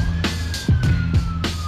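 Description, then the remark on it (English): A police car siren, with flashing red and blue lights, behind a car on the road, wails with a steady, slowly falling tone, punctuated by rhythmic pulsing bursts over a low engine rumble, loud. “Instead, its headlights are joined by flashing red and blue, and a siren.”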